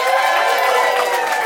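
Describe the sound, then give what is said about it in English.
An audience votes by a round of applause, clapping and cheering in a dense, steady burst, the rapid clapping blending into a bright, continuous wash of noise with voices whooping inside it. “Round of applause for first memory peeing on yourself.”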